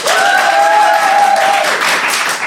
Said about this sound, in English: So if you think death sports are indeed the future, clap now. But if you think life sports are the future, clap now.